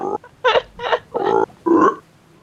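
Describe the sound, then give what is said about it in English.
A person imitates a bullfrog with four or five deep, throaty croaks in an uneven rhythm, each a short guttural burst, fairly loud, with no other talking. “I'm just going to, like, croak at it like a bullfrog in the hopes that it insults it somehow.”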